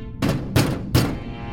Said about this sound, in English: Drac, the bell isn't working. I continue to bang on the door.